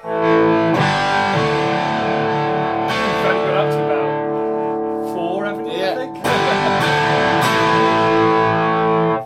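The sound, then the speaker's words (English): A crunchy, distorted electric guitar plays a loud rhythm of thick chords with the guitar's tone control fully up, fresh strums hitting roughly every few seconds and ringing out between them in a gritty, sustained wash. “Now, if you wanted a crunchy rhythm,”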